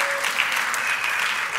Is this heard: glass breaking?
no